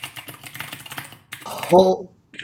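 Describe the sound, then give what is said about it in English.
Rapid, loud clicking of a new Bluetooth computer keyboard being typed on to search for an album's track listing, a quick irregular burst of keystrokes, followed by a brief tonal chirp near the end. “I got a really loud new keyboard, so I'm going to search”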